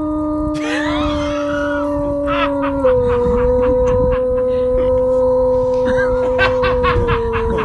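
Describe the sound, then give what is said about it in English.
A dog that is high as a kite howls in a long, sustained, slightly wavering tone that holds steady for several seconds, broken up by quick rhythmic huffing or yipping bursts. “So listen to him howl again.”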